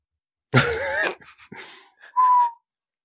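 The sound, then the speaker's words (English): A person makes a breathy, hissing rush of air, a few sputtering puffs, then a short, thin whistle held for a moment, fairly loud, whistling through the gap of two missing front teeth. “He whistles.”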